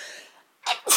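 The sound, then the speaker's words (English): A quick two-part sneeze: a short intake followed by a loud, breathy burst and a second forceful release, with a moment of quiet between them. “I have to sneeze.”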